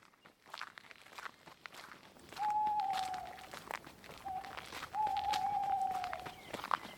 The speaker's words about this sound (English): What was that? It's just an owl. Nothing to worry about.